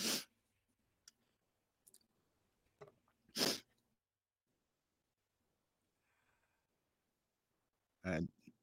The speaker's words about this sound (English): Damn, dude. It almost sounds like you're doing a bump or something. I know you're blowing your nose, but goddamn, it almost sounds like you're snorting.